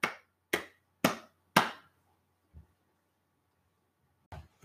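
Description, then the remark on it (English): Four sharp hand claps in a steady, even rhythm about half a second apart, each crisp and loud with a quick fade, followed by a couple of faint soft knocks. “I'm going to clap 4 times.”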